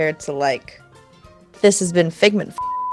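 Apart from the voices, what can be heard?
censor bleep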